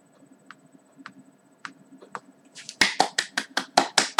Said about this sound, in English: Thank you. I had to just give you a golf clap there.